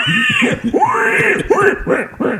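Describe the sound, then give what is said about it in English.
A person imitates a pig squealing: loud, strained, high-pitched vocal squeals that rise and fall in several quick bursts over a couple of seconds, with no other talking. “Though I am thinking about having the pig sound isn't working real well in the small speaker we're using, so I'm thinking about recording your pig sound and putting that.”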